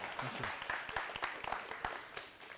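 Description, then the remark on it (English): An audience in a church claps for the deacons: a steady patter of overlapping, irregular hand claps at moderate volume, with no one talking, tapering off slightly at the end. “And so you could, if you wanted to clap, you could.”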